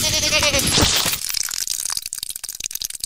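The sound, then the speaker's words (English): A goat lets out one loud, wavering bleat lasting about a second, followed by a run of sharp crackling and rustling clicks. “And that's 13 goats.”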